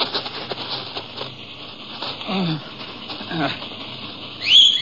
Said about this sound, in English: And in response to the whistle, the horses trotted up to him.